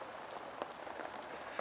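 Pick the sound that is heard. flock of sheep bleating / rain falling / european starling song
rain falling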